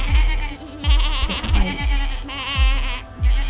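goats bleating

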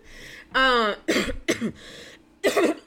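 coughing

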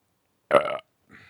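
wet burp

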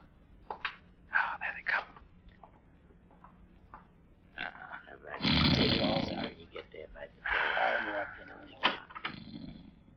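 man snoring

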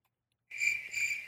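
crickets chirping sound effect

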